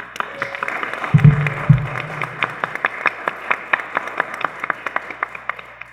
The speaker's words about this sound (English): please give a special round of applause to our community guest star, Dr. J.K. Luthra, who played the translator and the Inquisitioner.